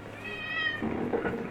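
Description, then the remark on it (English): A cat lets out a single drawn-out, clear meow, followed by a brief burst of rustling noise. “Hello, kitty, kitty.”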